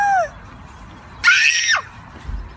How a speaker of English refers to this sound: Listen to these two kids scream and cry when the Easter Bunny shows up.